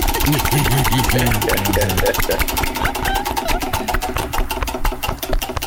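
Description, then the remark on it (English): A spinning wheel with different cuts of meat attached (pork loin, ribeye, ham, Queen City sausage) clatters as the meat slaps rapidly and regularly against its pointer, the ticking spacing out as it gradually slows. A person talks briefly over the first couple of seconds. “You can hear the different cuts of meat slapping.”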